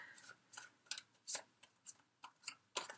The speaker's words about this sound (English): I have already shuffled all the decks, but I'm just going to take in some more energies as I'm shuffling for you, Virgo.